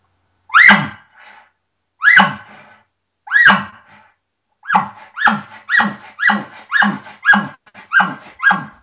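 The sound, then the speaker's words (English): A reed game call sounds three slow, raspy, bark-like notes spaced apart, then speeds into a quicker run of about eight similar notes, loud and clear with no talking; the second part of the call is made by breathing back in rather than blowing out. “But then the second part of the call, I'm breathing a deep breath of air back in with my tongue, actually not on the reed at all.”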